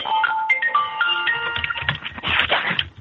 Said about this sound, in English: All I can hear is a phone ring.